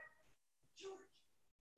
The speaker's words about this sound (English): As you can see, one problem with Zoom is if you have dogs, they're gonna interrupt you from time to time, but we can get over that.